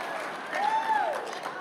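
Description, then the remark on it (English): A short burst of audience applause, many hands clapping together in a dense, steady wash at moderate volume, lasting under two seconds. “No, do not applaud for that.”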